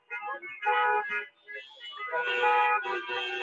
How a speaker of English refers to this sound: So as you can see, cars keep rolling in, lots of signs, messaging communities not cuts. Lots of honking, lots of noise.